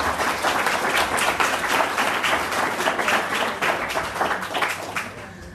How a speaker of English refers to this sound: Please give our fantastic panellists a huge round of applause.